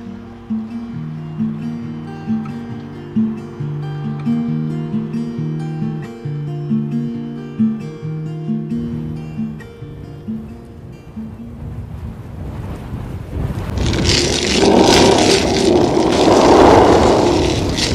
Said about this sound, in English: For now, let us enjoy this sunny afternoon and the tranquil river on which the boat diminishes steadily as it gains the far bank.